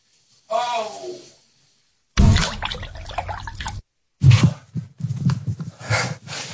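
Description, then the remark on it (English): A pained groan, then a burst of noisy cold water splashing onto a man's genitals for a second or two, followed by a man talking over more faint splashes. “He's putting cold water on his cock.”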